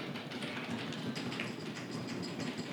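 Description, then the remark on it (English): A continuous, rapid drum roll rattles steadily for about three seconds at an even, moderate volume, with no voices over it. “Drum roll, please.”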